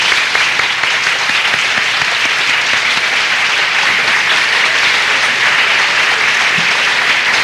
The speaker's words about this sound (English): I will ask for a round of applause for her.